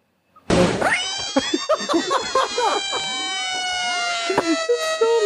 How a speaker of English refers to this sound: This is 3 minutes and 14 seconds of 33 screaming frogs.